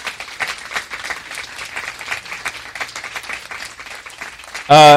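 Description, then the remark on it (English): An audience applauds the panel steadily, many hands clapping in a dense, even patter for about five seconds, ending in a sudden louder burst of sound. “I want to thank the panel today. Will you give them a round of applause?”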